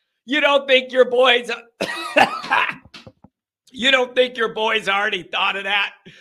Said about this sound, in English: … cranked up an extra cough.